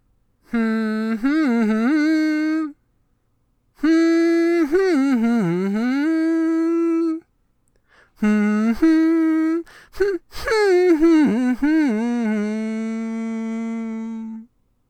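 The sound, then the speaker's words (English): A person hums a wavering tune in four loud, sustained phrases separated by brief pauses, the pitch sliding up and down in a mid vocal range, with no words spoken. “I'm gonna hum it for her, okay?”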